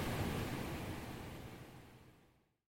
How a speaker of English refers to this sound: You're listening to Natural White Noise Ambience.